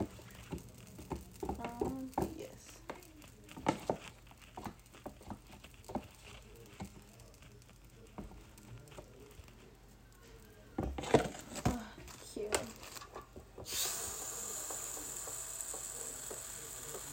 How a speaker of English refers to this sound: You hear that sizzle, girl?